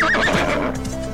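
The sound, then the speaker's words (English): A horse whinnies loudly with a quavering high cry while its hooves clip-clop in a steady rhythm underneath as it is led down a gulch, without any talking. “I'm leading my horse down the gulch.”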